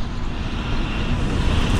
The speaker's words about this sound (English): It's a big truck coming.